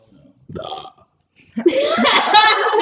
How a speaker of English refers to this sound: He just burped on it.